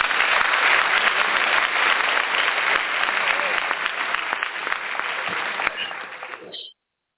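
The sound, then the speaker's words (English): A crowd gives Jalen Hurts a round of applause in a dense, steady wash of clapping for several seconds, loud, tapering slightly before stopping abruptly. “So I got to give Jalen Hurts a big round of applause.”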